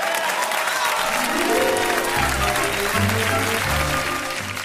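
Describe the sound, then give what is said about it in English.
A crowd claps and cheers loudly and steadily for several seconds for Paul Mooney, a dense wash of applause with whoops mixed in and low musical tones swelling underneath. “Make some noise, ladies and gentlemen, for Paul Mooney.”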